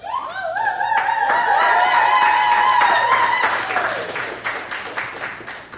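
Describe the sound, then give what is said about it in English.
A loud crowd erupts in cheering and whooping as a DJ is introduced, with high voices rising together over dense, steady applause that swells and then gradually thins out. “Please, please, get yourselves ready to make some noise and get down with …!”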